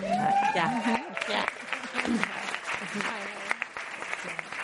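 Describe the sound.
An audience applauds steadily for several seconds, a dense wash of clapping with a few voices murmuring and calling out underneath.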